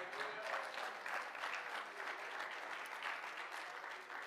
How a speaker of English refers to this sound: If you believe that tonight, clap your hands and praise Him.